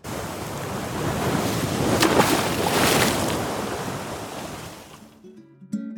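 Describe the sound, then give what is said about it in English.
Ocean waves wash and surge in a steady, broad roar with some wind as a ship sails across the open ocean, swelling to a peak midway before easing off. A few soft tonal notes enter at the very end. “And off they went, Captain Aawk and Captain Blackbeard, sailing across the open ocean in search of buried treasure.”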